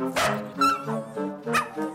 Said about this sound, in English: As you can hear, she's whining about something. Okay, well, now she's barking about something. But what really is she saying? I just kind of wonder, like, will I ever really know? Can we ever learn her language and just have a full-on bark-versation?